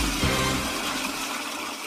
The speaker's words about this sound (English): I got to get a good toilet flush in there. Oh, yeah. Powerful office toilet sound.